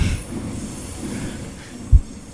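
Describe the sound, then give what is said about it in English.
A train rumbles steadily and loudly, a continuous low mechanical roar with one brief heavy thump toward the end. No voices. “I'm waiting for the train to leave.”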